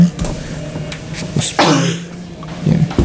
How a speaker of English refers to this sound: so you can get rid of my gross coughing.